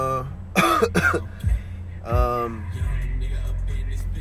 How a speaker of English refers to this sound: Don't mind, excuse me for the coughing and all this, you know, all this shit, because it's like my allergies is crazy right now.